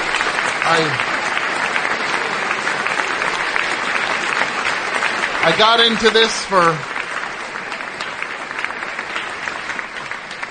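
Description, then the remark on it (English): Steady, dense applause from an audience fills the whole stretch, a continuous crackle of clapping as Tom Sharpling is introduced, while a man speaks briefly over it partway through. “I didn't get into this for the applause.”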